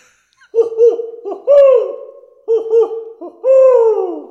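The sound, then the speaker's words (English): An owl hoots in two loud phrases, each a quick series of short rising hoots ending in a long, drawn-out descending call, with a brief pause between them. “Let's see you do it right now and dodge this owl.”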